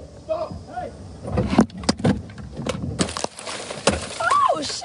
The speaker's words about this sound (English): They break it. They're breaking her window, and she's just laughing, smiling.